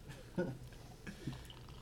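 Soda is poured into a glass to top it off, a steady fizzy hiss of liquid running throughout, with a couple of brief murmured vocal sounds.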